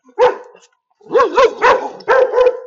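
A dog barks loudly: one bark, a short pause, then a quick run of four or five more with a slightly whining, tonal quality. No one speaks.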